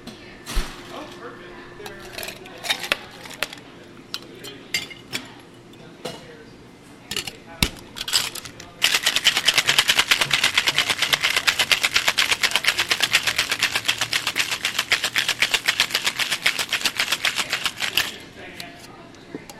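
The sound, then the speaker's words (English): A few scattered clinks and knocks, then a cocktail shaker holding four drink ingredients in equal parts is shaken hard for about nine seconds, ice rattling in a fast, steady, loud rhythm before stopping abruptly. “Okay, now we got those 4 ingredients in equal parts in our glass, so this is one of the easiest drinks to make. And just shake it up.”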